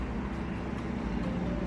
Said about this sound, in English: I made a conscious decision, and you can hear a semi-truck. It's a Peterbilt with a very small sleeper.